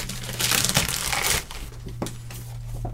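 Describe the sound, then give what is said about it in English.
Crinkling and rustling of plastic packaging being cut open with kitchen scissors, loud and dense for the first second or so, then softer handling with a couple of sharp snips. “I'm going to have to cut it with... you know how YouTubers have really cool hunting knives and things when they sort of cut into things?”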